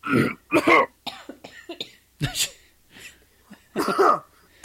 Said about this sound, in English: Everyone starts coughing. I'm fine. Everything's fine here.